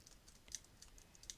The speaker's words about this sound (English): I'm kind of typing that because I'm putting that into the blog, important.